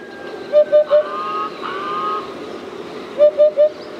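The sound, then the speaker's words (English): A hoopoe calls twice with soft, hollow hoots in quick sets of three, a short pause between the sets, over a faint wash of background birdsong. “These soft, modest hoots signal a bird so distinctive, so fabled, that it's hard to know where to begin its story.”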